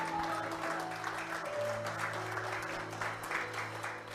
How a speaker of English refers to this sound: Can you do me a favor for those who are broadcasting and those that watch with us online? Can you give a big hand clap and a hallelujah and welcome our online church that comes to worship with us every week?